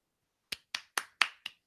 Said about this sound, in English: More clapping, more round of applause.